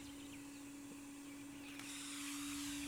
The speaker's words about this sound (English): I don't know why they sound like a vacuum cleaner.